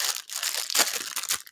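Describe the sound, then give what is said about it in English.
Crinkling and rustling of a plastic snack bag being torn open, with dense crackly bursts over a second and a half and no voices. “Right, bag's open.”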